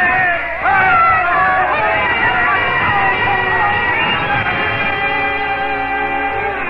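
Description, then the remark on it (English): A large crowd cheers and shouts at a political gathering during an election campaign, a loud, continuous roar of many raised voices that holds steady for several seconds with no single speaker standing out. “I remember her face during those days as she stood listening to the crowds at the political gatherings.”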